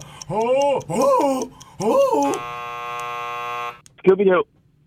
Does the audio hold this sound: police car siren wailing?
no